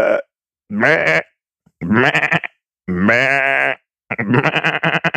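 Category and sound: animal, sheep bleating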